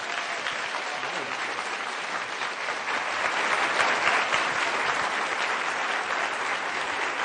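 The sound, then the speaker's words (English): Steady applause from an audience on the UC Berkeley campus, welcoming author Greg Kokel to give a talk, fills the whole stretch, a dense wash of clapping that swells slightly in the middle and holds loud, with no voices heard. “So let's welcome Greg Kokel with a warm round of applause.”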